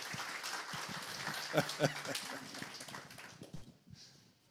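An audience applauds a speaker invited up to share his story, a dense, steady burst of clapping with a couple of brief vocal whoops partway through, before the clapping thins out and fades near the end.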